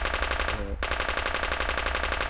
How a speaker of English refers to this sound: but the middle one, which was pretending to be Winter, sort of starts to just crumple and fall down into the ground and crashes onto the ground. And is still being shot as the gun is being emptied.